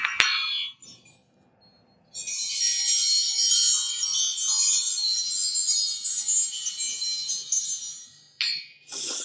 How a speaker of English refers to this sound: So I'll welcome you back with my little fairy bells.